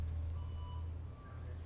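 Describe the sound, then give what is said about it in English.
A large fire truck idles with a heavy, low engine rumble while faint reversing beeps sound in two short stretches, with no talking. “I fucking got a fire truck out here, baby.”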